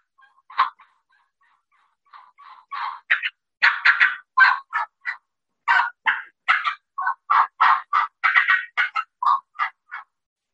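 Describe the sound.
A turkey call imitating an excited hen: a few scattered yelps, then a fast, insistent run of sharp, raspy yelps with cuts mixed in, rising in pace, volume and pitch, fairly loud, with no talking.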